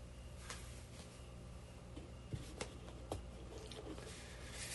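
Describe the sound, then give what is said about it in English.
Liquid soap being poured from a container filled about halfway into a small hole, a soft, quiet squishy trickle lasting a few seconds, broken by a few faint wet clicks and pops, with no one speaking. “So what I do is I fill this up about halfway, and then I pour it just like so.”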